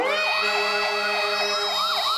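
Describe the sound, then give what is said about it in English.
A fire department siren wails steadily, responding to a fire alarm, its harmonic tone sweeping up and down in rapid, repeating cycles, loud and continuous over a low engine rumble, with no voices. “the fire department thinks the fire alarm went off again.”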